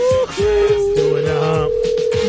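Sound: telephone dial tone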